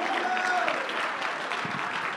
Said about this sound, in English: Oh, I wish you'd clap your hands unto the Lord. Come on, somebody shout unto God.